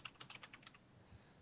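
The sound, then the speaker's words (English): Quiet, rapid clicking of computer keyboard keys, about eight keystrokes in an uneven burst that stops partway through, leaving faint background hiss. No one speaks. “I can hear you typing.”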